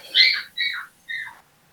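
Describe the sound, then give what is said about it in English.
A puppy crying: three high-pitched whimpers in a row, each sliding downward in pitch, with short pauses between them and no talking. “The puppy crying.”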